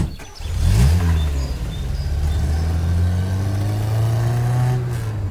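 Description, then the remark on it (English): A car engine revs up and pulls away in New Mexico, its low steady drone rising in pitch and holding loud for several seconds, with no talking. “All right, back in the car. Okay, back in the car. Here we go.”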